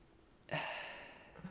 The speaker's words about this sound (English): I'm just slightly yawning. Why did you do that? He just yawned into a closed fist. It was really weird.